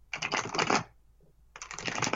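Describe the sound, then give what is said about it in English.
Tarot cards are shuffled in two quick riffling bursts, a dense papery flutter, separated by a brief pause; no one speaks. “Okay, tell me when to stop shuffling”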